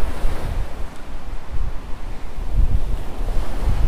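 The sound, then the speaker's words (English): Steady wind gusting across a beach in Miami, Florida, at about 9 o'clock at night, buffeting the microphone with low rumbling bursts while surf washes in the background; loud, with no voices. “I just finished running at the beach. It's about 9 o'clock at night. It's a little windy here in Miami, Florida.”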